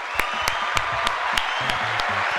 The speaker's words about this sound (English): Welcome to the segment of the show called Dad Jokes. Good. I think there's a clap.